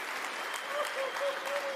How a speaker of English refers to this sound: If you're seated, can you clap these people?